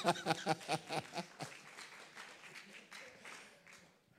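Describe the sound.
A church audience, told to clap for themselves after passing a trick question, breaks into applause, opening with rhythmic bursts of laughter and voices, then settling into a steady wash of many hands clapping that slowly tapers off.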